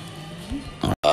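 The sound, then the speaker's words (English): A short, low, croaky burp that rises slightly in pitch, followed by loud, noisy bursts broken by a sudden moment of silence. “And that burp was live on the...”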